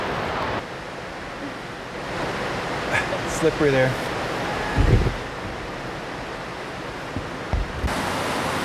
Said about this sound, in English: See the waterfall, the big waterfall up there. Oh, it's cool.